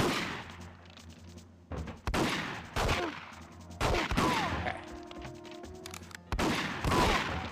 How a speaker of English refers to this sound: Okay. Reload, reload, Bond, reload. Oh gosh, I'm getting shot. Okay, automatic gun now. This is what we call bullet hose. Bond loves to bullet hose.